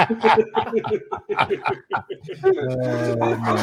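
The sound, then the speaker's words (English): A person mimics a dog with a quick run of short, yappy barks, then finishes on a longer drawn-out howl-like tone, fairly loud. “Bark.”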